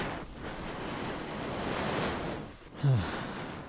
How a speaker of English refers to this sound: I think it's a little... Oh, windy.